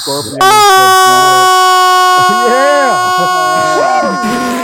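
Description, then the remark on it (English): A loud, steady electric school bell rings with a harsh buzzing tone for several seconds without a break, while people talk over it. “You got a school bell there?”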